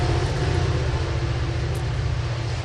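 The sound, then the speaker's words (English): A steady, heavy rumble of a passing train, loud and continuous with deep low-end throb and broad noise above it, holding level throughout with no voices. “I'm going to wait for the train to go by.”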